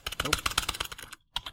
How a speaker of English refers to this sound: Stop typing. Look at me. Stop typing. Just stop typing. You're still typing.